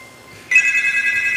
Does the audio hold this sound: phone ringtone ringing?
yes